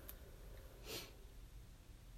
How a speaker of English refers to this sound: Nice sniff. I'll do it again.